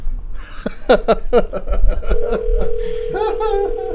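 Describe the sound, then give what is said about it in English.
A quick run of telephone dialing beeps for a scheduled phone call is followed by a steady, sustained phone tone that holds to the end, with faint laughter-like sounds mixed in. “Yeah, no, come on, we got a phone call scheduled.”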